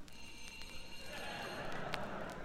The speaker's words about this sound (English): There goes my doorbell.